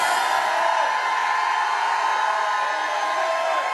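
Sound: audience shouting and whooping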